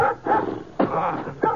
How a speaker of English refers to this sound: Old hound dog came charging around the side of the house, sounding a lot meaner than he looked.